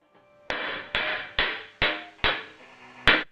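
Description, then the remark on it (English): Six sharp metallic hammer strikes on the bow of a cymbal as it is being made, spaced about half a second apart, each ringing out with a bright shimmering decay. Fairly loud, with no talking. “Again, another video here of you making, hammering the cymbal and, or the bow of the cymbal.”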